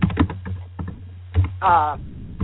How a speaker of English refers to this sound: And is somebody typing? Mm-hmm.